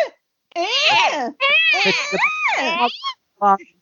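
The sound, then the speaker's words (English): A person imitates a goat's bleating with warbling, quavering vocal cries: two long wobbling bleats rising and falling in pitch, then a short, clipped final bleat, loud and alone. “Excuse me while I make some weird goat noises.”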